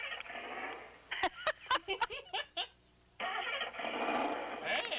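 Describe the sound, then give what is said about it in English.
A car engine cranks in a quick series of sputtering bursts, pauses briefly, then catches and settles into a steady, fairly loud running rumble. “My car starts better than that.”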